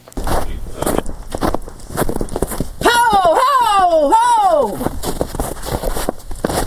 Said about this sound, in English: Walking through the snow to flush a rabbit. Why? It is the sport of falconry.